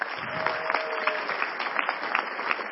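A church audience applauds its choir director: dense, steady clapping from many hands that holds at an even, moderate level for the whole few seconds, with no one speaking over it.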